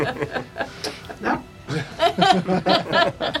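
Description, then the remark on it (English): A dog barks in a quick, uneven series of sharp, yappy barks, moderately loud, with a few short breathy sounds mixed between them. “Have you got a doggy?”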